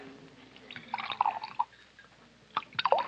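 Liquor glugs from a bottle into a glass at a bar in a few short gurgling bursts with soft splashes and drips, at modest volume with no talking.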